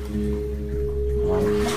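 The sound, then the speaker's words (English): Floodwater from a storm sloshes and laps steadily inside a flooded home, standing a little over knee high, a continuous watery movement over a low, constant hum, with a slightly brighter splash toward the end and no voices. “It's just a lake in here. A little bit over knee high right now.”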